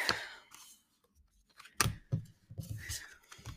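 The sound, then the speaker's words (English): A deck of animal cards being shuffled before a card is pulled, with papery riffles, a couple of sharp snapping clicks and soft sliding rustles, no voices. “I said I was just gonna go with what it is, but I don't know if I shuffled right.”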